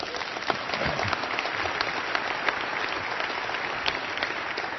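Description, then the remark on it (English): An audience at a church service claps steadily throughout, a dense, even wash of many hands at moderate loudness with no voices over it. “I was looking for applause, you could tell, trying to bait you there.”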